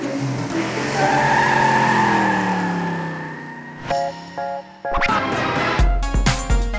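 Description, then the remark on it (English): NASCAR race cars roar around a track with loud, sustained tire squeals and skidding, engine tones rising and falling as they swerve through tight turns, followed by sharper bursts of screeching and revving near the end. “making tight turns and avoiding the other cars for a long time.”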